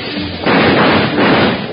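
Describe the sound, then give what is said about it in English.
Gunfire erupts suddenly after a short quiet moment as a door is opened onto a dark train vestibule, a loud, harsh roar of shots that keeps rattling for over a second with no voices. “While Bill and Jingles were searching through the train for the bank robbers, when they opened the door to a dark vestibule and sudden gunfire crashed around their ears.”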